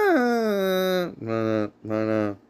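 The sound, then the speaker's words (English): A man sings a short wordless tune: a long note sliding downward, then two sustained, droning notes, giving it a mournful, almost howling quality. “You're getting progressively more bored singing that song.”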